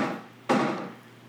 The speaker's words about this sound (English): We got a cat in the... poltergeist. We got a cat in the drawers.